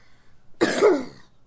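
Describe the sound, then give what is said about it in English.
A child who is getting sick gives a single short, raspy cough, fairly loud, lasting under a second against an otherwise quiet background with no talking. “so there might be a cough or two, but we're okay, right?”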